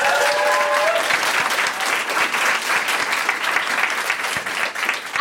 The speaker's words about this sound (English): That's bigger applause so great.